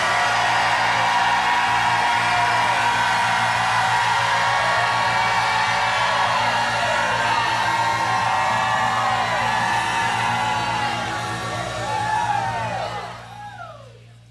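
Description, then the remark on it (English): A large audience jumps up and erupts in sustained shouting and whooping, a dense roar of many voices with rising and falling yells, loud and continuous before tapering off at the end. “If you believe it, jump up and shout like you never shouted in your life.”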